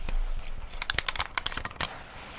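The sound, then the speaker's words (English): Liquid being splashed liberally and patted onto the skin of a neck: a quick, irregular run of wet slaps and crackly taps lasting about two seconds, moderately loud with no voices. “I'm splashing. No, it's liberally. I've just thrown it on all over my neck.”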